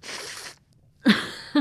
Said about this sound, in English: Sorry, I'm gonna blow my nose.